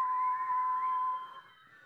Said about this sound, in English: And so could you all on the count of three just whistle for me? Ready? One, two, three.